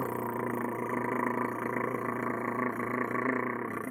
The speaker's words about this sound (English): Might want to take this dirigible in. It sounds like a really happy cat.